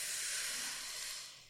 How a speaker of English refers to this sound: It's really a thing. Yeah. Like really deep breathing into your diaphragm. I'll model it here.